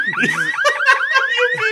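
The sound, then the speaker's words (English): A car alarm blares with a rapid series of rising electronic whoops, each sweep repeating about every quarter second, loud and steady with no voices over it. “You're making all this noise. You're going to attract people.”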